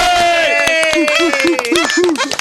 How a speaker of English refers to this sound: Vamos un aplauso para BO8 Studio.